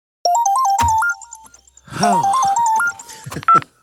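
A mobile phone ringtone plays a bright, stepped electronic melody, loud, repeating the short tune twice with a brief swooping sound between the phrases.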